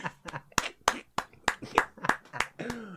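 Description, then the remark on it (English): Hand clapping in a quick, slightly uneven rhythm: about ten sharp, crisp claps over three seconds, fairly loud, with no talking over them. “I'm clapping.”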